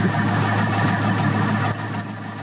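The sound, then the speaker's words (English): A Corvette engine idles with a steady, low droning hum, a quick, even ticking running through it. No one speaks, and the level dips slightly toward the end. “So you can hear that ticking sound.”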